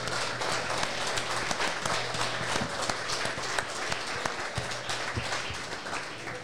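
A crowd at the club applauds Matty Johnson steadily for several seconds, dense overlapping claps at an even, sustained level with a faint low hum underneath.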